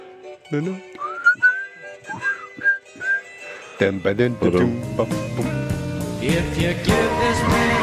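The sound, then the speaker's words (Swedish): Someone hums and whistles a film's theme tune, the phrases rising and falling, before a fuller, denser run of voices or music swells in for the last few seconds. “Ska vi gå ut genom att nynna på ledmotivet till filmen?”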